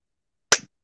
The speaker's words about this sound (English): I had to make that clap extra long.